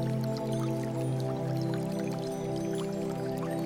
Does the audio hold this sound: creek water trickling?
yes